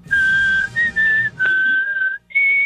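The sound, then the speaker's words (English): A person whistles a short, bright tune, holding clear steady notes in several phrases broken by brief pauses, with a faint low background hum underneath. “I'm actually really good at whistling. Oh, well, give us a whistle.”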